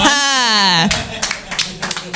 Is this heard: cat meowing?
no